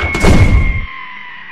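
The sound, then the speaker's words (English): A heavy door slams shut, one loud, booming thud that rumbles for under a second before fading into a faint, steady hum. “They took no notice of Rebecca as she staggered backwards into the house, just as Dawson slammed the door.”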